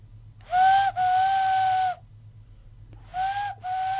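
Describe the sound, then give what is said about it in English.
A whistled imitation of a morepork owl call: two paired, steady mid-pitched hoots, a short note then a longer one, repeated after a pause. Clear and fairly loud, with no talking. “This is a moorpork.”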